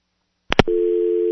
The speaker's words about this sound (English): There you go, and a dial tone.